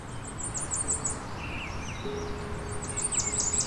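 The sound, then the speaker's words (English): A Cape May Warbler's very high, thin song: quick series of sharp, repeated notes, heard twice with a pause between, over steady outdoor background noise and a few softer chirps. “They have a high-pitched warble that is short and often decelerates and decreases in pitch.”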